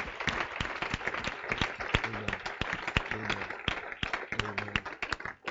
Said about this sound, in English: All right. Give God a big hand. Amen.